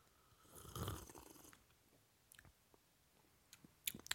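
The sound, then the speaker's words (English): A quiet slurping sip of a drink during a sip test, lasting about a second, followed by a pause with faint mouth clicks and a couple of small sharp taps near the end. No one speaks. “Hand me the drink right there”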